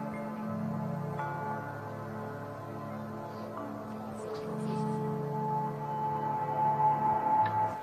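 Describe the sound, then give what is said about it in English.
Slow, sustained ambient music with layered droning tones and a warm low pad, a few soft chiming notes drifting in above, steady and moderately loud with no voices. “This is ambient music.”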